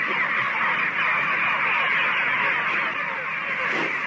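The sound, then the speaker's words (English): A crowd of farm birds, from which one is being picked out to raise for Thanksgiving, squawks and honks nonstop, a dense, loud chorus of overlapping cries filling the whole stretch with no pauses and no talking. “Picking out the bird you're going to raise for Thanksgiving.”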